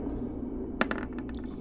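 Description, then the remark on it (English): Dice rolled for initiative in a game clatter onto a table, landing on a 9: a sharp first hit followed by a quick run of lighter, rapidly fading clicks as they tumble to a stop, over a low steady background hum. “I don't know why, but that dice scared me.”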